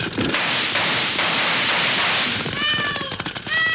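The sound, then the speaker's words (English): A steady wash of loud, hissing noise gives way to several sharp gunshot cracks, each trailed by a high, whining ricochet tone that slides in pitch, fired by two riders chasing a runaway wagon along a trail. No one speaks. “Again, they're shooting it up.”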